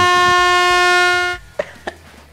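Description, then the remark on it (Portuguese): A loud, sustained air horn sound effect rings out for over a second, then cuts off, followed by a couple of short, faint knocks in the quiet that remains. “por isso ele merece buzina, Pix. Pode pôr aí.”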